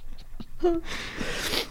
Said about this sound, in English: Oh, that was a weird sniff. Sorry.